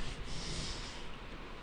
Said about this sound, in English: Oh, see, I thought I was going to burp or sneeze. I yawn. Look at that. I go from a burp sneeze to a yawn.